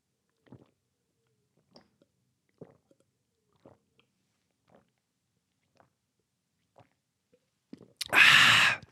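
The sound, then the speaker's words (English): Someone gulps down a powdered greens drink mixed with water in about eight soft, evenly spaced swallows roughly a second apart, then lets out a sudden loud, breathy exhale at the end. “Downed it, mate.”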